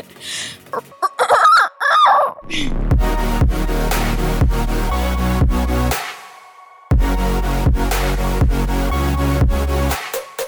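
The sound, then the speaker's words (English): A person mimics a rooster's crow in a couple of loud, strained cock-a-doodle-doo bursts lasting about two seconds, followed by an upbeat music track with a steady thumping beat. “So you said you can do rooster noises.”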